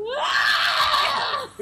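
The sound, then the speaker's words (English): A person lets out a loud, shrill, sustained scream imitating Fry from Futurama, rising sharply at the start and holding a strained pitch for over a second before cutting off abruptly. “Next time they go to collect a scream, I will do my Fry scream.”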